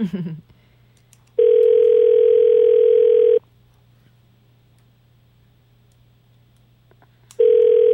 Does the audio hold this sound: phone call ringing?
yes